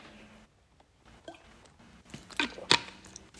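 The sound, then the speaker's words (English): Quiet mouth sounds of someone drinking water: a few soft wet sips, then two sharper gulps near the end, with no talking. “so it's a long time to drink some water.”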